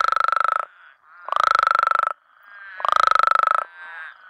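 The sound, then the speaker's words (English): Male Mexican spadefoot toads give three loud, croaky baritone trills, each a buzzy pulsed burst under a second long, separated by short pauses with faint calling in between. “Instead of making that quacking I described earlier, these males make this kind of baritone trill, but it sounds kind of more croaky.”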